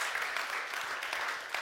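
A crowd applauds steadily, many hands clapping in a dense, continuous patter that stays fairly even in loudness throughout, with no one speaking over it.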